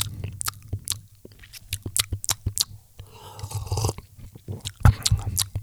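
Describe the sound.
Wet mouth clacking of teeth and lips, a rapid, irregular stream of sharp smacking clicks with a brief softer, slurpy stretch in the middle, and no talking.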